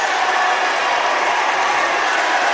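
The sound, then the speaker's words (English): A packed basketball crowd yells and jeers in a loud, continuous roar, a dense wash of many voices that stays steady for the whole few seconds, as smack talk breaks out during free throws and players egg on the crowd. “See some stuff being yelled.”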